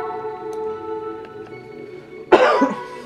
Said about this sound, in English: excuse me. Still coughing. It's almost gone though, I can tell.